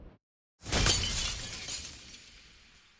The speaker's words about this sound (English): In our empty house, a mirror came unhooked by itself and smashed on the floor in a thousand smithereens.